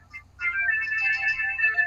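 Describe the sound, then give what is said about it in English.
A phone ringtone goes off after a brief quiet moment, a steady electronic melody of high, bright tones playing continuously and fairly loud over a faint low hum, with no one speaking. “They also had ancient ringtones.”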